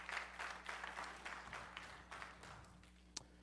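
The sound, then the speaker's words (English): Scattered audience clapping, fairly soft and uneven, continuing for a few seconds over a steady low electrical hum, with no voices. “Everyone who clapped, I'll see you next week.”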